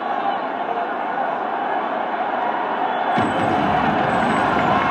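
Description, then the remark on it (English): A large arena crowd roars steadily as a fight breaks out between the teams in a game involving the Flyers, a dense wash of cheering and shouting that suddenly swells louder and fuller about three seconds in and stays at that heightened level. “Well, listen to this place.”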